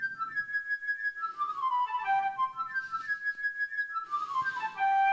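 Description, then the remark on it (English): A flute plays a bright, fluttering bird theme: quick high trills and swooping downward runs, repeated twice, clear and fairly loud over a soft lower accompaniment, with no voices. “So first you had the bird, which is a flute.”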